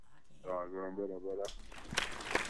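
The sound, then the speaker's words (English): A voice calls out in a drawn-out, tonal shout, then a brief, dense burst of clapping and crackling noise fills the last second, loud and busy with overlapping claps. “Yeah, a round of applause there.”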